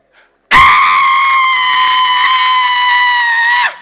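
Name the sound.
man screaming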